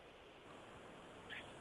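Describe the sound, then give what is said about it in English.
A phone line drops out as a caller is cut off, leaving only a steady, low hiss of static with a faint brief swell near the end and no voices. “Yeah, I think we lose. We lose him you, there.”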